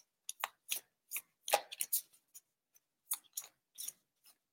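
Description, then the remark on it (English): Crisp bursts of cards being shuffled, a series of quick papery riffles and flicks in an irregular rhythm with short pauses between them, and no voices. “And as I'm shuffling, I just wanted to say one thing before I forget”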